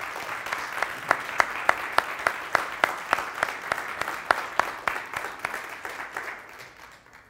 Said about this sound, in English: Come on, give him a hand clap there.